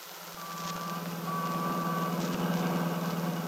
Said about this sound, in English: Seems so noisy. All the people, the traffic.